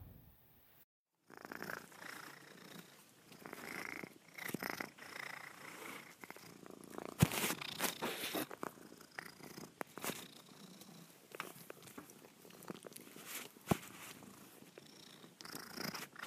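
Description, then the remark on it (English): A domestic cat named Weirdo McFeardo purrs steadily, a soft rumbling drone with rhythmic swells from its breathing, continuing alone for the full stretch with a few faint clicks and rustles. “Thank you so much for sending in the clip of your purring cat, Darlene.”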